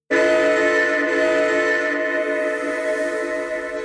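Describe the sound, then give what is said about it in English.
A train whistle sounds one long, steady blast for nearly four seconds, loud and chord-like with a rich, bright tone, over a faint low rumble of a crowded rail car on a train from Laredo at night. No one speaks. “The rhythmic motion of the train, while rough and jarring when it first left Laredo, has now become a”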